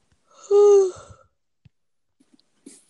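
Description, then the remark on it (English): A dog named Ozzy (Oswald), asleep on a couch, gives one loud, drawn-out yawn with a squeaky, whining tone that rises and fades over about half a second, followed by quiet stirring and faint shuffling sounds. “Yawn.”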